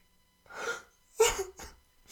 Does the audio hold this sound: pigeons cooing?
no